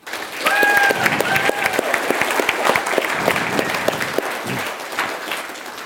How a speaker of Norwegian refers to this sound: Så gir vi en stor applaus til komiteen tvert her.